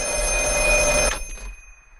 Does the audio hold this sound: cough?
no